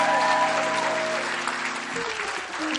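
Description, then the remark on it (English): An audience at a church service claps together in a dense, sustained burst of applause, with a steady sustained tone humming underneath that drops away partway through while the clapping carries on. “You're still not clapping properly. Clap properly.”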